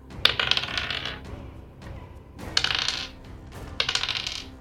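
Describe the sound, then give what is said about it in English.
Two special 'aspiration' dice clatter and rattle across a hard surface in three quick bursts of tumbling clicks separated by brief pauses, rolled for a Dominate Monster spell and landing on a one and a six, with no one speaking. “I'm gonna use two of my action inspiration, my aspiration dice, as we've so deemed them.”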